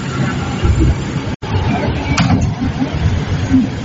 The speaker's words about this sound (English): This is a Brooklyn-bound C-Wagon train. The next stop is Fulton.